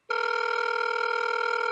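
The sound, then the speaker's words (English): A phone line rings out on an outgoing call to Brent Bozell: one steady, buzzy electronic ring tone starts abruptly and holds at an even, fairly loud level, with no voices. “So let's bring in and phone a friend, Brent Bozell.”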